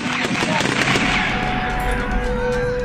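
Tear gas launchers fired by Polish border forces at migrants on the Belarus–Poland border, at the edge of the EU, in a chaotic clash: a rapid scatter of sharp pops and bangs over a loud, continuous wash of crowd noise and shouting voices.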